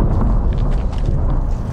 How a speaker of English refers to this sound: Explosions ahead force us to pull over before another slams into a building close by. All right, well, you can hear the incoming rounds. The incoming rounds from Russian artillery fire are really intensive here